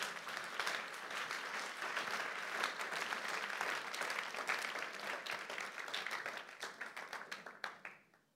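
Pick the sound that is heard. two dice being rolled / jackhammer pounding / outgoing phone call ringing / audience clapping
audience clapping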